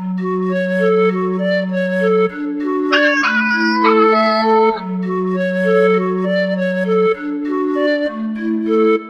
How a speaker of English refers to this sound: Question five is on panpipes, and there's a little vocal ad lib in there, and of course I've given that to a cat.